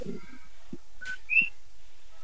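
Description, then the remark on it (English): A pet bird whistles a few short, high tonal notes, a faint one first, then a brief chirp and a brighter, louder whistle near the end, with no talking. “And hello to your bird.”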